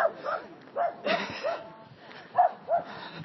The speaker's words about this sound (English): dog bark in the background